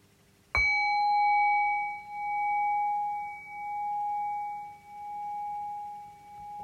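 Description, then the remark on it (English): A single bell is struck once and left to ring, its clear tone sustaining for several seconds with a slow, wavering pulse as it gradually fades. No voices, just the bell alone. “and I'll ring the bell.”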